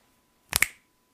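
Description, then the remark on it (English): Two sharp finger snaps in quick succession, crisp and bright, with no voices or other sounds around them. “Snaps.”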